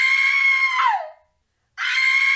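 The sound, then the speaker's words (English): A loud, steady wailing city alarm siren, sounding out across the city, holds, then sweeps downward and cuts out; after a brief silence it starts up again at full strength. No voices. “There are these alarms that basically, like, go off to alert.”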